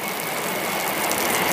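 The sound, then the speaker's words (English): A passenger train with people aboard rolls past, giving a steady, dense rumble and mechanical clatter that fills the whole clip and swells slightly toward the end, with no voices. “I don't know if you can hear that. Train coming. Train.”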